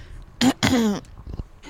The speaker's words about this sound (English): Sorry, I have reverted from burping to fucking clearing my throat today.